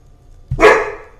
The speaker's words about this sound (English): My dog's angry.